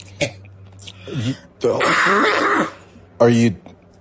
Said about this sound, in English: No, I've had that cough for yeah, months.